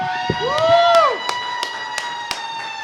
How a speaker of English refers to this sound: So let's give them a round of applause, show them that we're excited for them.